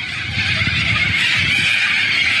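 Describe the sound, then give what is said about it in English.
A flock of hundreds of cockatoos in a neighborhood in Australia screeches in a dense, continuous din, many harsh overlapping calls blending into one loud, steady racket with no pauses. “These are all these cockatoos, and they invaded this entire neighborhood in Australia.”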